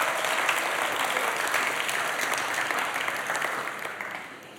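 An audience claps together in a steady, dense wash of applause that holds strong before easing slightly toward the end, with no voices rising above it.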